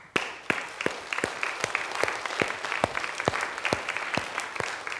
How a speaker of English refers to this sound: And those of you that have stepped up and taken those opportunities to serve, I think this morning you deserve a round of applause.